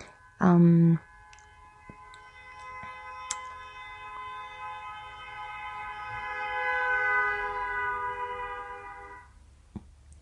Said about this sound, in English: That was someone honking for 30 seconds straight, I do believe. So I'm sorry, that really distracted me.